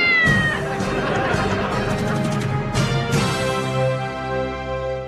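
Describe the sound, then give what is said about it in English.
A cat yowls and meows loudly, a continuous run of drawn-out, wavering wails that rise and fall for several seconds without a break. “We expose what really happens if you put a hat on a cat.”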